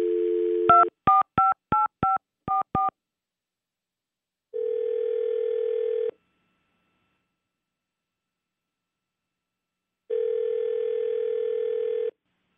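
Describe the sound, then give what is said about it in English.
A brief dial tone, then a quick run of seven touch-tone beeps as a number is punched in, followed by two long electronic ringback tones spaced a few seconds apart. No voices. “Hang on, let's call him.”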